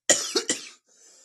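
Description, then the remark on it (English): Three harsh, rapid coughs in a quick burst, the first strongest, as a drink goes down the wrong way, followed by a faint, raspy intake of breath. No one speaks. “Gone down the wrong hole.”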